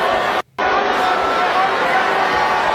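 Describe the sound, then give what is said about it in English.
A large crowd boos loudly and continuously at a woman each time she tries to speak, a dense wall of jeering voices that drops out for a split second near the start before surging straight back. “Every time she tries to start a sentence, they start booing incessantly.”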